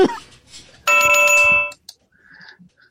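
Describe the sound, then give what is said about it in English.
A bright, loud electronic bell chime rings once for just under a second to mark a correct answer in a quiz game, sustained and ringing, then cuts off, leaving quiet with faint murmurs around it. “Ding, ding, ding.”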